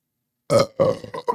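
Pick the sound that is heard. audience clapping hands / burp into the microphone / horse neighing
burp into the microphone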